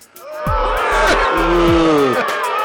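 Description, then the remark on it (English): A loud crowd booing, a dense wash of many voices swelling in after a brief quiet start and holding steady for a couple of seconds, with some voices rising and falling in pitch. “Today he's getting the booze.”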